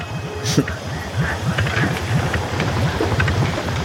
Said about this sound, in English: So the boat's idling very quietly and slowly to go past unnoticed.